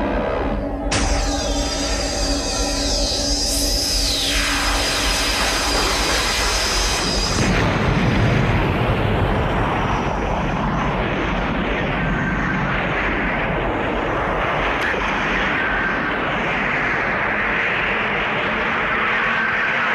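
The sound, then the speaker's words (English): A loud sound effect of a moon base launching into outer space: a rocket-launch roar with whining tones sweeping downward, then an abrupt cut to heavy, rumbling explosions and crackling blasts that continue steadily to the end, with no voices. “hear the sound of the moon base 5. Launching it and setting off 4. The moon base into outer space and explosions”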